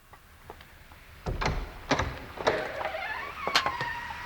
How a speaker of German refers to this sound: Isabel und die TKKG-Freunde durften Kommissar Dräger begleiten, als er zu Valentin Köschen fuhr. Isabels Ex-Mann war noch auf. Er öffnete die Tür, kaum dass sie geklingelt hatten.